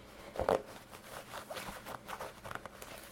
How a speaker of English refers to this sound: Let me zip back up my pants before we wrap up here.